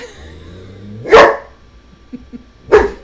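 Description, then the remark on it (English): A German shepherd dog barks twice, two loud, sharp woofs about a second and a half apart, with quiet in between and no one speaking. “That's my dog demonstrating”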